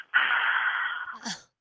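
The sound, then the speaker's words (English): A voice imitates the heavy breathing heard in robocall voice messages: one long, steady, airy exhale lasting about a second, ending in a brief rougher breathy catch. No words are spoken. “But then I keep getting voice messages of them just breathing into the phone like...”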